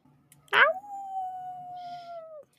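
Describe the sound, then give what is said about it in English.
A person imitates a dog's howl: one loud, sharp yelp breaks into a long, steady, slightly falling howl that holds for about two seconds, then cuts off. “Bad doggy. Bad dog.”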